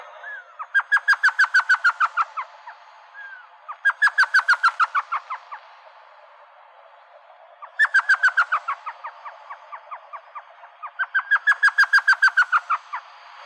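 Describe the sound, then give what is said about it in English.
An elf owl calls alone in four bursts of rapid, high yelping notes, each a quick chattering run of about a dozen yips with pauses between, clear. “But so the last time I've actually encountered one last year on Birdathon, we heard them out calling in the desert with their funny little elf sound. And we'll actually play that sound now.”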